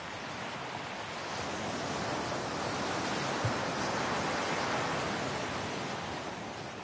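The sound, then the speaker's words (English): Ocean waves wash onto the shore at Durban in a steady, broad roar of surf that swells gently and eases off, with no voices, just the continuous rush of water. “And you know you're in Durban when you see the sea.”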